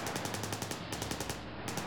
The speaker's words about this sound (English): They listened in terror as each car drove past, Thompson machine guns blazing.